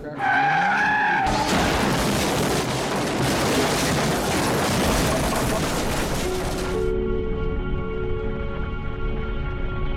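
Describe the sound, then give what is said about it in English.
A car revs up and skids with a long, loud tire screech lasting several seconds, then the engine settles into a steady idle hum. No one speaks. “Thanks for taking me out for a drive. Matthew Broderick. Your car is so cool. I love driving it.”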